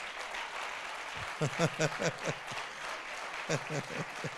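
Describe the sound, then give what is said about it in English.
Steady audience applause fills the whole stretch, a dense crackle of many hands, while a loud voice calls out over it in two short bursts. “That clapping is under attack.”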